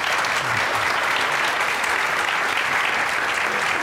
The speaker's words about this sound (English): But before we do, how about a round of applause for our speakers tonight?